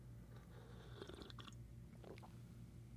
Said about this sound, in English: But before I get there, I'm going to take a nice sip of my dark roast coffee I got here going on today on a Monday.